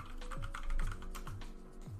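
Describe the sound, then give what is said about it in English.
Steady typing on a computer keyboard, a rapid run of crisp key clicks with a few heavier thumps mixed in, continuous across the whole moment with no voices. “I was typing that.”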